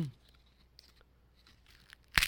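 Soft crinkling of a plastic wrapper as a fortune cookie is unwrapped, then a sharp, loud crack as the crisp fortune cookie is snapped open at the end. No talking.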